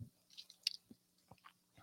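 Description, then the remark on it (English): Someone quietly sips coffee from a huge cup, with a few soft slurping and swallowing sounds spaced irregularly, and no talking. “My eyes will open a little bit more with each sip.”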